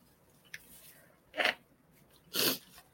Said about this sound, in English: Now I have to blow my nose, of course.